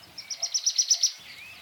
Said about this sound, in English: It's raining. It's a big rainstorm, and it's just about to stop. You can hear the birdies just coming out, tweeting just a little.